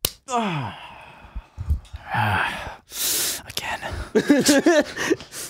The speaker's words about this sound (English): There's little slaps, then there's slaps, and then there's big slaps. You just said slap. We're going in the middle ground. Okay, I'll give you a slap. Ready? Ready? Yep.